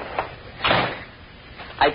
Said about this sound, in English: Shut the door if you come in